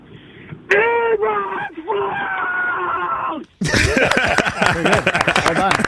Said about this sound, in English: We've been asking all Bears fans to just scream the word Eberflus at the top of their lungs and see how it makes them feel.